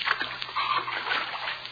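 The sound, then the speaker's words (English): Wet splashing and sloshing of someone wading through shallow water covering a basement floor, with a steady muffled watery rush and a few sharper splashes. “Water. Basement floor covered with water.”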